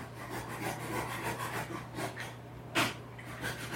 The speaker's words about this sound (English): Once he's done sawing off the bone of the last victim we hijacked in here.